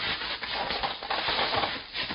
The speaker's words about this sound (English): Pick him up and drag him over to the chair,